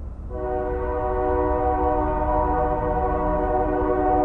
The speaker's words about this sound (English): I was sat in my office one day in downtown Tempe, and I heard a train horn. There was a train line about a block away from my office, and I heard the sound of the freight train horn echoing across the neighborhood.